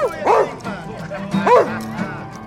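A dog gives two whiny, yelping barks about a second apart, each sliding up and down in pitch, over a steady low hum in the background.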